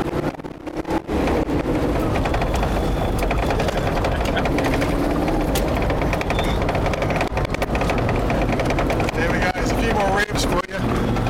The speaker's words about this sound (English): You can probably hear the sound of Homer's 350 fuel injected engine as we cruise down.